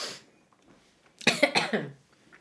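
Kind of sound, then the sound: human body sound, coughing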